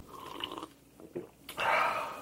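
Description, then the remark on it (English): Quiet mouth sounds and a brief wet slurp as someone sips wine from a fluted glass, followed by a soft breathy exhale. No one speaks. “I'm going to take my sip.”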